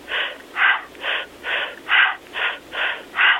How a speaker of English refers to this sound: I may have them breathe a little quickly. I may have them do, let's say, I say breathe through a straw, like you're breathing through a straw, and it sounds like...